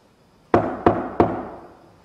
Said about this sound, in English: So I'm going to knock on the wall and I want you to replicate it. Make it loud, just like this.